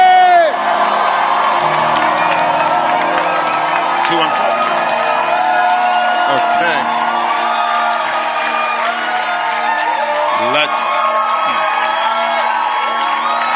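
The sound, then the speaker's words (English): A church audience cheers loudly and continuously, full of whoops, shouts and excited voices, with clapping mixed into the roar for the whole stretch, as a bishop is welcomed to the pulpit. “If you're excited as I am, make some Holy Ghost noise. Clap your hands as we welcome to the pulpit Bishop”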